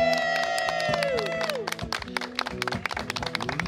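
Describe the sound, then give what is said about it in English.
A crowd cheers for Chris Partland at a Parkinson awareness community event, with a loud high whooping shout that slides downward, then scattered, uneven clapping carries on beneath fading voices. “Let's give a big cheer for Chris Partland, everybody.”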